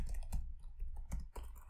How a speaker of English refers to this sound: Let's open up a text file here. We don't need to get fancy. Okay. Just slap those keys as loudly as possible so we peak the audio.